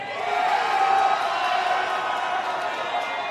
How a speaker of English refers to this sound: All right, the crowd's excited. I think we all liked this pick before it happened.